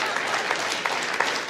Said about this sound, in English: It's funny you're cheering about that.